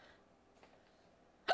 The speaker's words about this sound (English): Oh, I got the hiccups.